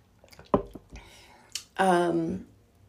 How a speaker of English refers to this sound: Having another little sip of water.